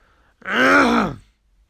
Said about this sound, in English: Sorry, had to clear my throat.